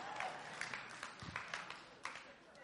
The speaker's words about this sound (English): All right, fellas, notice if your wife was clapping there.